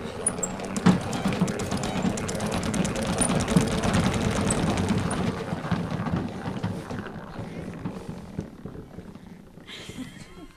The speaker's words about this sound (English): And it's just going to spin the water that has been collecting. We shake it, give a good spin, so it'll get all the excess water off of it. It's going to make a lot of noise.